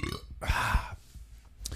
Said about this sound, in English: God damn, that's good. Burp life.